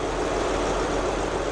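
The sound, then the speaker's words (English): Large diesel engines roar continuously, a dense, steady mechanical drone with a deep low hum underneath and no pauses or voices: two of the four main engines in an engine room of the submarine Pampanito. “And when the engines were running, this room was one of the loudest places on the submarine.”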